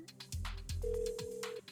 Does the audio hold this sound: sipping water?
no